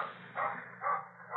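The Swensons' dog, in a garden, barks two or three times at an even pace, the barks muffled over a steady low background hum, with no one talking.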